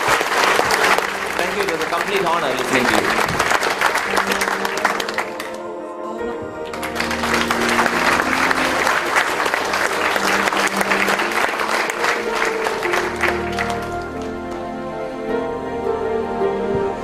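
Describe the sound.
Sustained audience applause after a talk on a campus, a dense crackle of many hands clapping, briefly dipping before swelling again, with a voice speaking over it.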